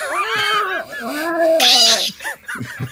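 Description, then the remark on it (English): An angry cat yowls in a long, wavering, drawn-out cry with a harsh hiss partway through, loud, followed by a few short murmured sounds. “Yeah, this cat doesn't seem like they want to be here.”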